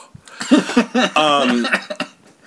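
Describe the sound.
A man vocally imitates a wet, loose fart, a sputtering, flapping raspberry noise that runs about two seconds with fluttering pulses, fairly loud, with no words spoken.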